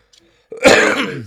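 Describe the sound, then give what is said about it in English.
A single harsh cough bursts out after a brief quiet pause and rasps on for nearly a second, rough and throaty like someone clearing their throat, with no talking around it. “Sorry, I was coughing there.”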